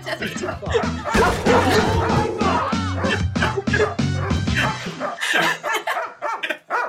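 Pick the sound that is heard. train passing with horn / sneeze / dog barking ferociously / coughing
dog barking ferociously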